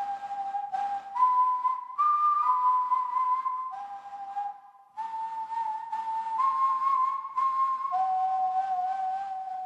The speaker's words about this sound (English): So I made it my ringtone because I just love the melody. The melody's pretty good. And just almost being scared when I hear it go off. And then I remember it's my ringtone.